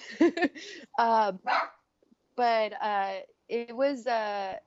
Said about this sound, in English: They got the doggies barking back here.